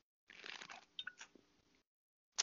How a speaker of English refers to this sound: Big gulp right there.